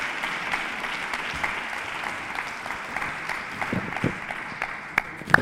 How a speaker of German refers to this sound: Begrüßt mit einem donnernden Applaus Manuel Winkler.